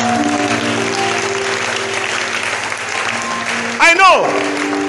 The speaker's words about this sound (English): I know why this clap is weak. I know why this clap is weak. Because you have tried it before.